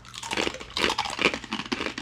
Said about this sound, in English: Very crunchy. Wow. Holy moly. What'd you say? Sorry, I can't hear you over the sound of me crunching this chip, and it's literally shaking my cranium. How do you find chips that are so freaking crunchy?